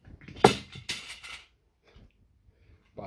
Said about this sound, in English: That was dice dropping.